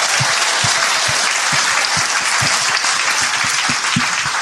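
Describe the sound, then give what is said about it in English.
A crowd applauds loudly and steadily, a dense wash of many hands clapping throughout with individual claps faintly standing out, sustained without a break and with no voices heard. “Round of applause.”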